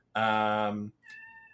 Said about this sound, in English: My cat's yelling, so I'm going to finish this up real quick. And I'm going to go take care of my cat.